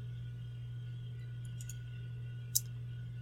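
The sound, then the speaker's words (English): A few short mouse clicks select 'unfinished' and 'unplayed' options on a computer: two soft ones close together followed by a sharper single click, over a steady low electrical hum with no talking. “So I will click not playing and just unfinished, unplayed is what I'm clicking for me.”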